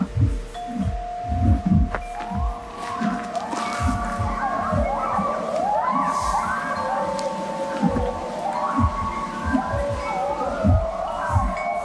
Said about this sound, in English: And the weird hum, hum, hum sound you can hear is my horse is eating. There's two of them. They're chewing hay.